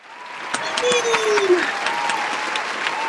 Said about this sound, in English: I love that poem. Thank you for clapping.